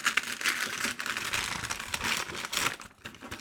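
Brussels sprout wrapping paper is torn and crumpled open from a present, a continuous busy rustle of crinkling and ripping with small bursts, no voices, lasting a few seconds before easing off at the end.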